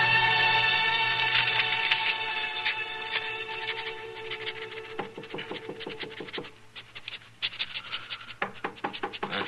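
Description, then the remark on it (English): A sustained musical drone fades out, then a series of sharp knocks on an office door follows in quick clusters, clear, with no one speaking. “Well, folks don't usually bother to knock at this office.”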